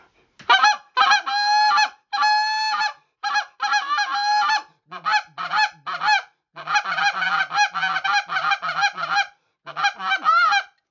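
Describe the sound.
A goose call blown loud, screaming and hitting fast calls: drawn-out spit moan honks mixed with rapid bursts of quick, choppy notes in fast runs, used to turn geese coming back, with no talking.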